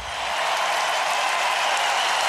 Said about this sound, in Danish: De rejser sig og klapper. Er det her sidste gang, vi har set ham? De er jo godt klar over risikoen for, at det her er slut.